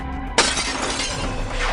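A window at a house door is kicked in around 2 a.m. After a quiet moment, a sudden sharp crash of breaking glass bursts in, followed by a sustained bright hiss of shards scattering and tinkling down.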